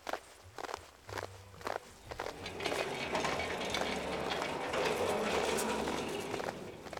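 footsteps walking away

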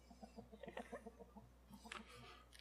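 chicken clucking

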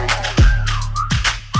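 whistling

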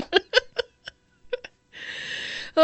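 hiccup

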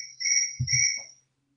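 cricket chirping

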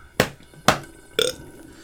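burp

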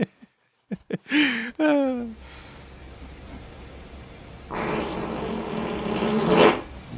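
fart

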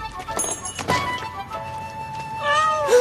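cat meowing

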